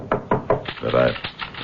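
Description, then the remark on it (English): Three firm knocks on a door in quick, even succession, clear, followed by a brief voiced murmur. “there is a knock on the door.”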